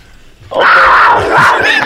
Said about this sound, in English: Was that a tiger? That was like a cougar, but who cares?